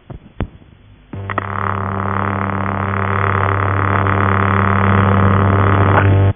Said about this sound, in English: As a no tone does not make a very interesting recording, we'll press on to the sound of a vibrator tone that is produced by the relays.